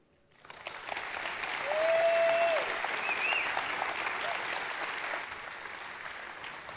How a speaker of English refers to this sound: How about one more round of applause for the New Testament Rewind team?